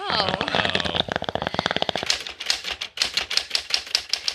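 Rapid, clacking keystrokes on a manual typewriter, struck close and fairly loud in a quick, uneven rhythm. A brief voice-like tone sounds at the very beginning.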